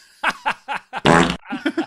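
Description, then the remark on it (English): A comedic fart sound effect: a string of short, rubbery bursts followed by a long, loud, buzzing blast and a few quick sputters at the end, all prominent. “You didn't want to play a fart noise?”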